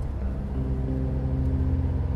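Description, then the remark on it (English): A car engine rumbles loud, a steady low drone whose pitch rises a little as the car pulls away and drives up a driveway. No one speaks. “My car shakes and thuds up Aunt Beattie's treacherous driveway.”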